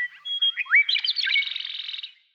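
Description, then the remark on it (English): A single bird sings a quick, varied phrase of high chirps and slurred whistles that ends in a rapid buzzy trill, clear with no other sounds. “The key to this extraordinary range of sounds lies in the bird's physical anatomy.”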